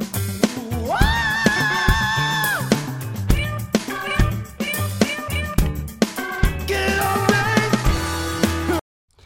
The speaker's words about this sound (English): screams like that, it just makes me happy.